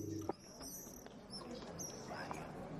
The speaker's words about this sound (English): I kind of dig them. You have birds. Yes, I think the bird. I think the birds are on the animated background. Yeah. Oh, they are. Oh yep. Yeah. There we go. I dig them.